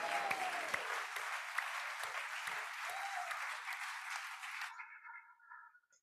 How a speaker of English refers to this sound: I think he's worth another hand clap.